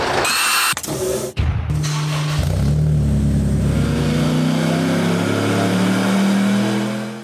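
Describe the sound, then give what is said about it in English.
A Corvette C5 time attack race car's engine roars, with a few sharp blips before it climbs into a long, loud rev that rises steadily in pitch. No one speaks. “With 22 track records, this Corvette C5 behind me is one of the fastest time attack cars in the US.”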